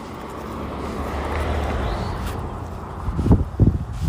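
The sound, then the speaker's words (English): A truck rumbles by outdoors, its engine a steady low roar filling the scene, with a couple of louder clunks near the end as it passes. “And you'll hear a truck coming by.”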